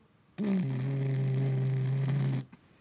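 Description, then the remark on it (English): A voice imitates the GAU-8 rotary cannon with one loud, steady, low buzzing 'brrrt' that starts abruptly, holds for about two seconds, then cuts off, followed by a brief faint sound. “That's a GAU-8, the sound that I was replicating.”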